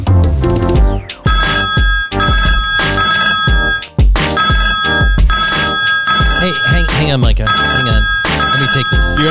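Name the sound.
phone ringtone ringing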